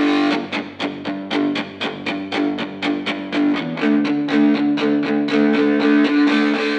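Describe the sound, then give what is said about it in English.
A distorted electric guitar plays loudly through an amp while being recorded, strummed in a steady, driving rhythm of repeated chords with a thick, buzzing rock-and-roll tone and no voices. “So I plugged in electric guitar and kind of fooled around a little bit, was recording the electric and trying to get the tones right and working with my amp to kind of, you know, create that rock and roll sound to get that tone.”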